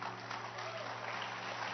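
audience hand clapping

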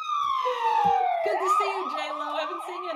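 police siren

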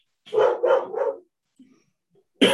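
dogs barking

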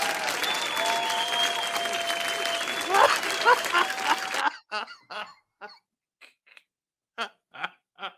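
audience clapping

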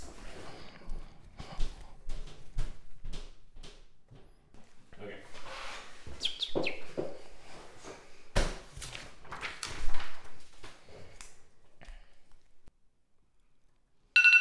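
timer going off

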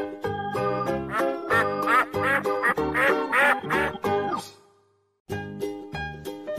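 duck quacking

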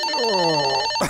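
bell ringing

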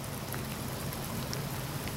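rain falling outdoors

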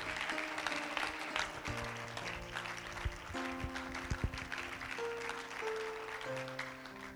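audience applauding

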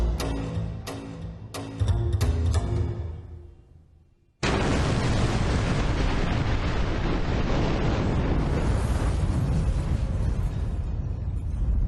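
truck bomb explosion

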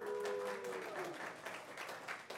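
hand clap applause

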